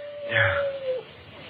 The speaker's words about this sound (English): The dog again.